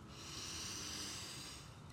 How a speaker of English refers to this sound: Breathing in together again, we are gonna repeat.